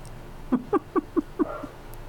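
An American Cocker Spaniel barks five times in a quick, steady series of sharp yaps, ending with a fainter sixth yelp, with no talking.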